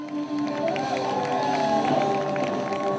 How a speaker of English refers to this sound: There was not one steady boot in the crowd as the beat rolled on, and the cheers were adequate enough